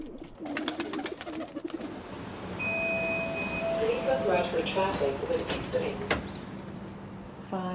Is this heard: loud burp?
no